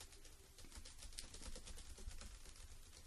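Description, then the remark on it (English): Quiet, irregular clicking of keys on a computer keyboard, a steady run of light taps over a low background hum with no one speaking. “You're not even typing. Yeah, I am.”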